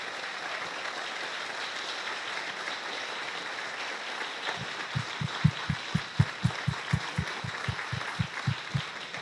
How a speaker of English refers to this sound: In fact, right now, could I ask my volunteers to please stand to be recognized? And if you'll all join me in giving them a round of applause for the hard work that they put into this movement.